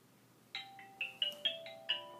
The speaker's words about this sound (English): I changed my alarm sound, I forgot.